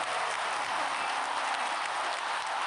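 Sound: applause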